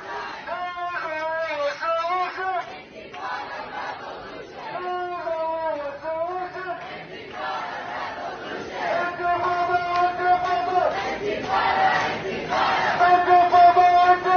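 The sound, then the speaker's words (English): A large crowd chants and screams "Intifada Revolution" in a UMass Amherst dining hall, many voices shouting the same short phrases in repeated rhythmic bursts, growing louder and more intense toward the end. “Listen to this in the, this is the dining hall yesterday, screaming Intifada Revolution.”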